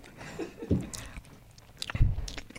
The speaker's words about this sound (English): I had to take the headphones off. You're chewing. Sorry, guys. I had to try to eat on camera.